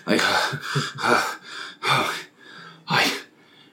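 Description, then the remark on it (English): A voice imitates heavy panting for the character Caster with a series of loud, breathy huffs in an uneven rhythm, about five sharp exhalations with short gaps between them. “And Caster's just panting.”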